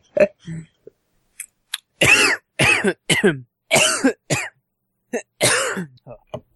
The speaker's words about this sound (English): Oh, so you got a bug or something too? A what? So you have a cough or something too? No, I think I just drank the water the wrong way.